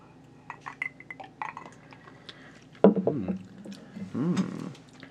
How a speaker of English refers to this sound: Should we just, like... Cheers. Cheers over the mic.